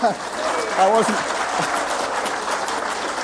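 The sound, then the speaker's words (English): An audience breaks into steady applause, a dense crackle of many hands clapping that holds for several seconds, with a voice briefly speaking over the start. “I wasn't seeking applause, I hasten to add.”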